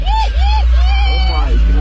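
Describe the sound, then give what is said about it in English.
Cars driving by, with a heavy, steady engine rumble and wavering whines that rise and fall. Excited voices shout over the noise. “Bro, these cars are meant to do this shit.”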